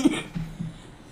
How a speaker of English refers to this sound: I have the lovely allergy cough. Oh, yeah. Yeah. It's that time of year.